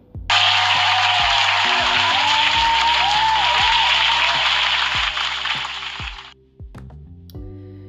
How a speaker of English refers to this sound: So round of applause for you.